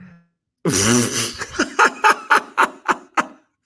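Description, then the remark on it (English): A loud, sudden sneeze bursts out, followed by a quick run of about seven short, rhythmic breathy bursts like stifled laughter, all fading after a few seconds. “Have to sneeze and it's”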